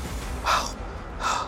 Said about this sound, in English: Zen out a little bit. Okay. Some nice deep breathing.